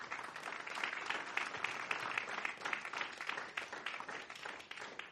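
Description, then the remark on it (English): A crowd claps steadily for about five seconds as a clap offering to the Lord, a dense, continuous wash of many hands at a fairly even level with no voices over it. “Give the Lord a good clap offering right now.”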